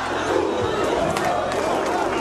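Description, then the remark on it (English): A large protest crowd of the Arab Spring roars and cheers at the news that Hosni Mubarak has gone, a dense, continuous wash of many voices, loud and steady throughout with no single speaker standing out. “Listen to that crowd.”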